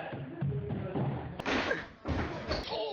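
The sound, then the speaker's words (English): A person's whole body slams hard into a 48-inch high by 96-inch wide chalkboard with a loud, broad crash, followed by a second jolting thud and a rattling, clattering aftermath over a low, murmuring background. “Abruptly, he turns around and ducks just as I fly right past him, crashing hard against the 48-inch high by 96-inch wide chalkboard with my entire body.”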